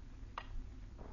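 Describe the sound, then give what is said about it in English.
A clock ticks softly, two quiet clicks spaced under a second apart over a low, steady background hum, with no one speaking. “you make a pretense of being quite busy, but your eyes keep wandering to the clock.”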